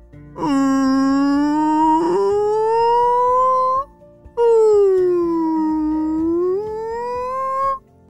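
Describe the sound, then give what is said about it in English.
A whale call: two long, loud moaning cries, each sliding slowly upward then dipping in pitch, separated by a brief pause, with no talking. “Do you know how to speak, whale? Yeah, it could be really hard to understand, but maybe let's try and listen again.”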